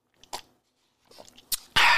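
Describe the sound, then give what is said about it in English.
Sipping of wine: a few wet mouth clicks and small swallowing noises, then a loud, hissy slurp at the end. No one speaks. “You know, right now, you know, I'm drinking my wine as I sip.”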